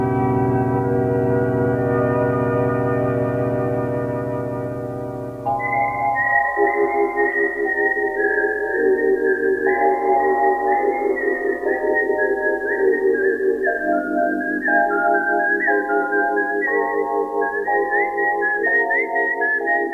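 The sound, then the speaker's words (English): A sustained, swelling instrumental chord gives way to a clear, loud whistled film-theme melody, whistled by a man coming down the road, gliding between notes over a pulsing musical accompaniment, with no one talking. “when he was whistling coming down the road, I was just like, oh, it's the Kill Bill theme”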